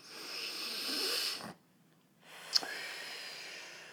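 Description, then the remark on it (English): A deep breath: a long, airy inhale for about a second and a half, a brief silent pause, then a slow, breathy exhale with a small click near its start. No talking. “Let's take a deep breath.”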